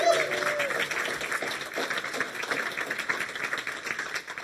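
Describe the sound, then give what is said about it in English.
A crowd applauds steadily to welcome a guest invited to come up, many hands clapping in a dense, continuous wash that holds fairly loud for the whole stretch, with a brief murmur of voices at the start. “to come up and to a huge welcome and applause.”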